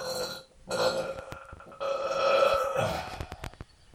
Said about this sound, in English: My goodness, really moved from the fart into the belching.